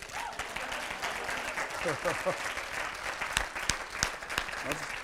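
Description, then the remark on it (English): An audience breaks into sustained applause at the end of a sermon, a dense wash of many hands clapping steadily for several seconds, with a few sharper individual claps and faint voices mixed underneath. “Y'all get something? Clap.”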